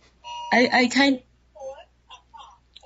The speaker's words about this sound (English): My grandfather was blind, and I inherited his talking clock. I'm really sorry right now. We have two guest stars today. I'm going to turn that off. I'm really sorry.